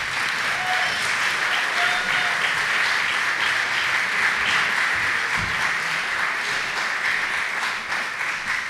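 A crowd at a storytelling show applauds steadily for several seconds as the next storyteller is introduced, a dense, even wash of clapping that holds its loudness throughout with no voices standing out.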